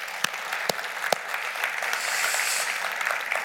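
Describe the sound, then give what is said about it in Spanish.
A church audience bursts into applause for the Lord after a prayer, a dense wash of many hands clapping with a few sharp, louder individual claps standing out near the start, sustained steadily with no talking. “¿Podemos darle un aplauso al Señor?”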